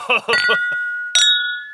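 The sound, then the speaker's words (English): Glasses clink together in a toast, two bright strikes about a second apart, each leaving a clear ringing tone that lingers, with brief voices at the start. “May your glasses be full and your spirits high. Cheers.”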